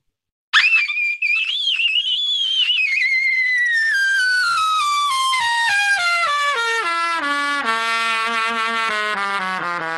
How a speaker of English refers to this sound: So I'll try to demonstrate again. I'll try to demonstrate a falling squeak for you.